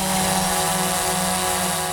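A small hobbyist drone buzzes steadily overhead in flight, its whining propeller hum loud, with sharp tonal harmonics holding even throughout and no voices present.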